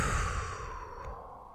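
A single long, airy exhale of a deep breath, strong at first and then gradually fading away, with no talking.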